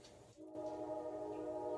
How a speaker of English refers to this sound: That sounds like the horn of a vinyl chloride car.